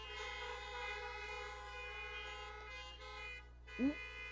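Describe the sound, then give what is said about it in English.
Many car horns honk at once as church members beep their horns, in a sustained, overlapping chorus of steady tones lasting the whole stretch, with a brief rising whoop near the end. “If you're the church, beep your horn.”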